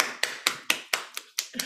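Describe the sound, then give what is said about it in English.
A steady run of about eight sharp hand claps in applause for a female guest, evenly spaced and fairly quick, each a crisp slap with a short fading tail. “And give a hand for this beautiful lady.”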